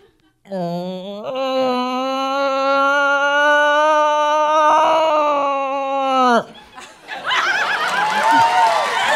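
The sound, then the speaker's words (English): A person imitates a cow moose call: one long, nasal, drawn-out bellow that starts low, rises and holds for several seconds, then drops off, followed by laughter and chatter. “And a cow moose, whatever, and then I kind of, Dad said it was kind of like a bell shape.”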